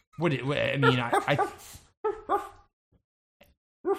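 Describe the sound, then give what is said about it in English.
Dogs whine and whimper in a long, wavering run of high-pitched cries, then let out a few short, sharp barks with brief pauses between them, clear. “Where did these fucking dogs come from? This is insane.”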